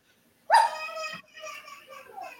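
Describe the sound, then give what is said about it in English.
A dog lets out a sudden sharp, high yelp, followed by a couple of seconds of whiny, wavering child vocalizing and fussing. “But anyways, dog, whining kids.”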